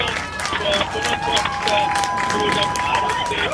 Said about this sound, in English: As you can hear, more cheering here.